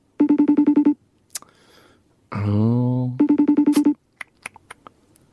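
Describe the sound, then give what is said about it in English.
A FaceTime video-call ringtone chirps in two bursts of rapid, evenly pulsed electronic beeps, loud, with a short vocal sound between them and a few faint clicks afterward. “Let's see if I can FaceTime her.”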